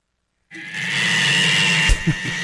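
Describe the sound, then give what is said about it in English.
A cat screams in one long, loud, harsh and strained wail that starts abruptly and holds steady, with a couple of short bumps near the end, while a woman holds it pressed against her chest during a trip to Atlanta. “And this cat is just being pressed up to her chest and screaming.”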